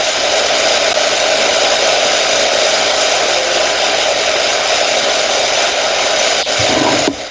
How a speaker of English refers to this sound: Oh, wow. What is that? Is something happening in the back? We just have an air conditioner going. That's it.